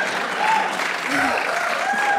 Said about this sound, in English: Welcome, everyone. Thank you for joining us for this live taping of this movie, Changed Me. Yes, you're being recorded, so the applause is very helpful.